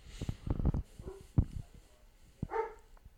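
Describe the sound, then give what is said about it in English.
A dog barks a few times in short, sharp bursts spread over a few seconds, moderately loud, with a higher yelping bark near the end. “Dog barks.”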